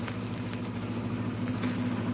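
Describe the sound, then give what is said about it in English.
An old car engine, a jalopy shifting into second gear, rumbles at a low, steady pitch as it eases off and slows, with no voices over it. “Going into second. Has to slow down.”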